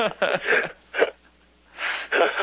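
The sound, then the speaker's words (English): A single breathy, hissing sneeze bursts out after a few short vocal sounds, followed by another brief vocal noise. “God bless you.”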